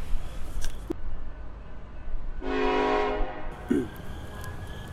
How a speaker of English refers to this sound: Did you boys hear that? Sure did. It sounded like a train. There's not been trains on these tracks in years.